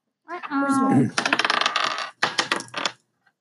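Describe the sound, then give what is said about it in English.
Three players roll red dice during a game: the dice clatter and tumble across a hard table in a rapid burst of clicking rattles, briefly pause, then rattle again before settling, with a short ringing tone at the start. “These three people need to roll their red dice.”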